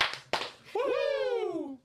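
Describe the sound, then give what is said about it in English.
Two sharp hand claps in quick succession, then a loud, drawn-out Ric Flair-style 'woo' whoop that slowly slides downward in pitch before cutting off. “Two claps and a Ric Flair.”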